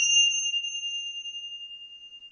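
A single bright chime is struck once and rings on with a clear, high, steady tone, slowly fading with a gentle shimmering pulse. No voices or other sounds.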